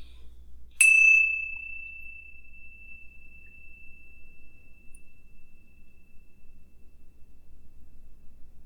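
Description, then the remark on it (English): A single small bell is struck once to begin a moment of quiet, deep breathing, its clear bright tone ringing out and slowly fading over several seconds into near silence, with no voices present. “just to take a moment, just for ourselves and for our listeners to take a deep breath and just come into this moment and listen to this little bell.”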